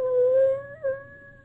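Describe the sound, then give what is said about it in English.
A puppy whimpers in a long, thin, high whine that briefly wavers and catches midway, then trails on steadily; fairly soft, with no talking. “He acts just like he knew what a biscuit eater is.”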